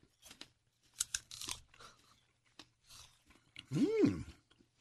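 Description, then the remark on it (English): Crunching as someone bites into a crisp apple, a few sharp crisp bursts followed by quieter chewing, ending with a short rising-and-falling hum from a voice. “It's got a nice crunch to it.”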